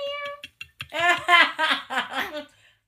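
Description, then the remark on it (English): A person imitates a cat meowing, voicing a quick string of high, nasal mews, several short calls running together in a fairly loud burst. “Mew, mew, mew. Mew, mew, mew, mew, mew.”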